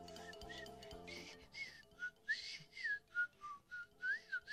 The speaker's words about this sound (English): And he immediately started whistling the song, and the bird started dancing, kind of bobbing his head to the theme.